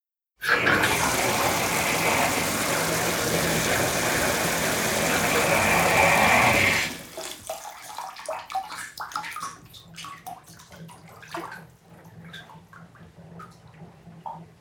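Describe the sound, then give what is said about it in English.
Bathwater rushes loudly and steadily for several seconds, then cuts off, giving way to softer, irregular sloshing and small splashes as someone moves in a filled, steaming hot bath. “So here she is speaking to us from a steaming hot soak.”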